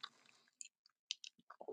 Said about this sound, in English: I'm sipping my kombucha in the morning, as you probably know I do.